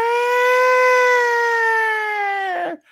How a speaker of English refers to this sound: Bring back the siren. Remember the Rangers with the MSG siren? Oh yeah. Yeah, that used to be great.